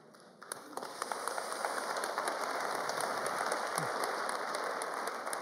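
Steady rain patters on a hard surface, a dense continuous hiss scattered with crisp individual drop taps, starting abruptly and holding at an even, moderate level with no voices.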